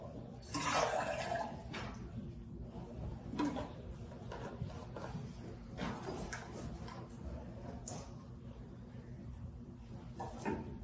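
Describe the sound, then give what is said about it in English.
Water splashes and trickles steadily into a container, with a few brief louder gushes and faint clinks against a low background rumble. “We're going to read, we're first going to add some living water. We have here living water.”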